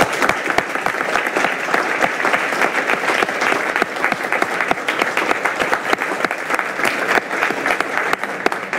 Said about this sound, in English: So if we could give these three publications a round of applause.